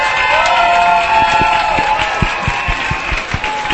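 An audience applauds with dense, steady clapping and scattered cheers and whoops rising over it, a loud crowd sound that holds for several seconds.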